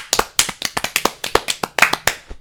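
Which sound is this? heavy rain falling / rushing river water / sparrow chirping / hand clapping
hand clapping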